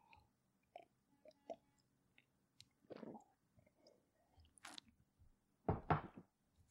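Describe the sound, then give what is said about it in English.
Someone sips coffee: soft lip smacks and small mouth clicks, then a brief, louder slurp near the end, followed by a quiet swallow. No one speaks. “And I'm going to seal that with a coffee sip.”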